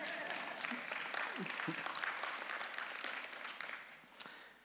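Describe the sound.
Audience applause at a live stage event after a speech, a dense steady wash of many hands clapping for several seconds, with a few scattered voices mixed in, tapering slightly toward the end.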